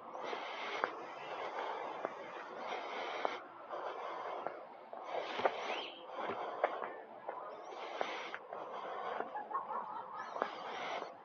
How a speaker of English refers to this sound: Yep, the chickens. Plus they're our friends, our emotional support during the pandemic.